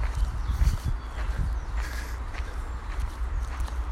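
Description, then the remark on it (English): Footsteps walking on the ground, a series of soft, dull thuds at an unhurried walking pace over a steady low rumble, with no voices. “And make this podcast as much about my feet on the ground here as I walk, just as much about that as anything I might say.”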